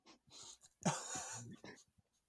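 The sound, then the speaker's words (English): A dog snuffles and sniffs in short, breathy bursts, with a louder rasping stretch in the middle before a few quick final sniffs trail off into quiet. “Oh, here's your dog. Snuffling.”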